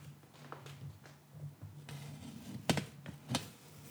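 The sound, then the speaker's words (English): Worn eyeglasses knock against the side of a microphone's noise shield as the wearer looks around it, giving two sharp, bright taps amid a few softer clicks and rustles over a low steady hum. “That was my glasses hitting the noise shield.”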